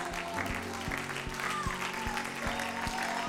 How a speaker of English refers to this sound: Now clap your hands if you have faith.